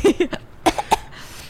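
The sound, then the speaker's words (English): A person coughs in a quick run of short, raspy bursts, a few rapid ones followed by a brief pause and then three more sharp coughs; an anxiety cough. “You're coughing.”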